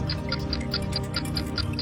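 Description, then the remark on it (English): A steady, rapid ticking of a 25-second countdown timer during a word-association game round, roughly four ticks per second, sharp and clear over a low droning musical bed with no voices. “Good answers, and you still had 9 seconds left on your clock.”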